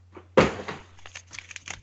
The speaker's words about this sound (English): Unfolding the piece of paper. It's suspense.